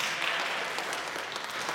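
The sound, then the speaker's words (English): A church audience applauds its parish administrator: a steady wash of many hands clapping with no pauses, bright and crackly, keeping an even level the whole time with no voices on top. “Hands down, right? Hands clapped.”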